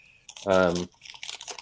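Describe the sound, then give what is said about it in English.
A scrap of paper with notes on it rustles and crinkles in short, scratchy bursts as it is searched for, with a brief hummed voice sound breaking in near the middle. “it's here somewhere, that scrap of paper, a couple of other notes on it.”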